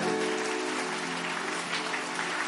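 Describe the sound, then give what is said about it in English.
A crowd claps steadily and continuously as a clap offering, a dense wash of many hands at a fairly loud level, with a faint sustained tone beneath and no clear talking. “Increase that clap offering because change is coming.”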